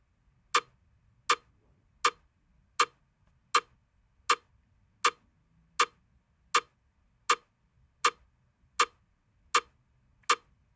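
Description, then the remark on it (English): A metronome clicks a steady beat for guitar strumming practice, about fourteen sharp, bright ticks evenly spaced roughly three-quarters of a second apart, each identical in loudness, with no voices or other sounds. “So just listen to the clicks for a little bit to get a sense of that clicking sound.”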